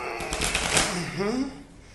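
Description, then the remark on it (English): A quick, papery riffle of a deck of big monster cards, hard to shuffle, being shuffled, a dense crackling burst lasting about a second, followed by a man's voice exclaiming as the rustling fades. “And shuffle them up. Whoa, these are hard.”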